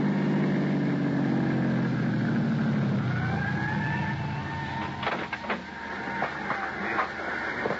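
An ambulance's engine rumbles loudly and then fades as it pulls away from the curb and heads south toward town, while a wailing siren rises and sweeps overhead, with a few clattering knocks near the end.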